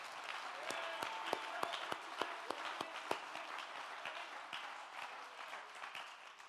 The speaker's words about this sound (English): In fact, I think we ought to clap our hands and thank God for the United States of America that we live in this.